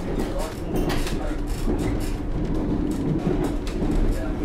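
A train running along the railway, heading back from Shanklin, a steady, loud low rumble with faint rattling and clicking that stays constant throughout.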